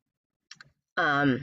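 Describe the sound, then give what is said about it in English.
A couple of quick, light computer keyboard taps as a person types something to remind themself, in otherwise quiet surroundings, followed immediately by the person starting to speak. “You know, I'm just typing something.”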